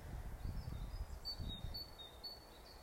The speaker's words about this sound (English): I hope you can hear the beautiful surroundings where I am. I can hear frogs and birdies and water trickling out on the running trail.